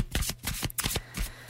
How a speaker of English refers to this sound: What kind of shuffle do you call this? You can probably hear by how I'm shuffling the cards.